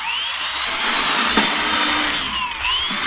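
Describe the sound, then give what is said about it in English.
An electric drill, a power tool converted to a drill by slipping a drill bit into its chuck, runs steadily as it bores holes through a board, a loud, continuous motor whine with a gritty hiss and tones that dip and rise slightly in pitch, with no one talking. “Look at it drill holes through this board. It drills too fast.”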